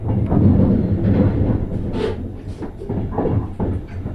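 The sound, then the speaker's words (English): A train from Amsterdam, a few minutes from its terminal station in Glasgow, Scotland, rumbles along steadily, a deep continuous roar with faint rattling and clacking from the carriages, heard from on board with no one speaking. “We are just a few minutes away from our terminate station, last leg of this part of the journey.”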